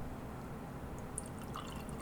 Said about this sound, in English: I have like half a glass or two-thirds of a glass of Sprite. I'm just going to pour a little.